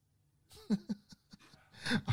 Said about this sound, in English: I hate this dog. It keeps barking so much. Not really, though. It's just like little yips, but it's fine.